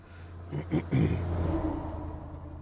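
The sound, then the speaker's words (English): A car engine with an idle-stop feature rumbles low, with a few short bursts of louder noise as it kicks back into life before settling into a steady idle hum. “Well, you can hear it starting and stopping. I have this idle stop.”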